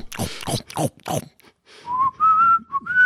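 A few rough vocal bursts give way to a person whistling a short tune: clear, steady tones that step upward in pitch, with a brief dip before the final held note.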